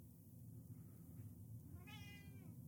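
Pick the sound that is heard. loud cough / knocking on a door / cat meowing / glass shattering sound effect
cat meowing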